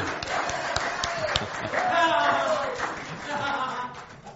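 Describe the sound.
An audience applauds with steady, dense clapping for several seconds, while voices call out and murmur over the top of it.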